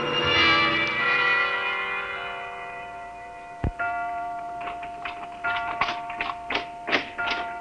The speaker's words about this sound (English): Clock.